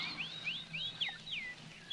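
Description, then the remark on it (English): Birds chirp in a forest in a quick series of bright, rising and falling whistles, about six or seven calls spread over two seconds, clear above a soft, low background hum. “Oh, what beautiful birds.”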